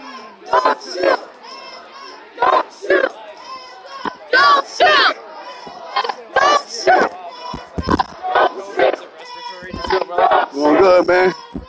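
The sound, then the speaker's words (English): A large crowd of people at an outdoor protest chattering and shouting at once, many overlapping voices swelling into loud bursts every second or two, with a steady murmur filling the gaps between. “Big crowd today.”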